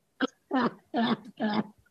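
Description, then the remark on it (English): A deliberate run of four coughs, one short bark followed by three longer, throaty, voiced hacks in a steady rhythm, with no talking over them. “When I cough like that, I get charley horses in my grundle.”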